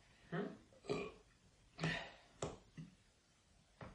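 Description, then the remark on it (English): A string of loud burps, about six short guttural bursts spaced unevenly over a few seconds, with one longer rumbling belch in the middle and no talking. “I like a big burp.”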